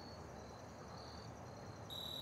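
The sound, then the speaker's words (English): Crickets trill in a steady, high-pitched drone against a quiet outdoor hush in late summer, fairly faint overall, with one cricket growing louder toward the end. No voices. “And then finally, the crickets.”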